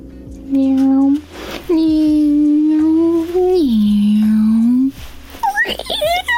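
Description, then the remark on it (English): A voice imitates a car engine with long, steady droning hums whose pitch dips and slides, made in three loud stretches before a few short, higher vocal sounds. “That was me being a car.”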